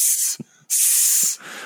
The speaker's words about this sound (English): where this was just the actual sound that was on the set. And Ben Burtt was there like a maniac with a microphone recording it. And the loudest part of the movie is just hissing.